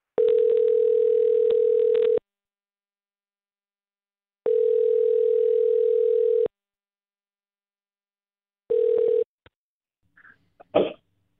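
A phone ringback tone sounds through the earpiece as a radio show on Mix 94.7 places a call: two long steady rings, a third cut short, then the faint clatter of someone picking up.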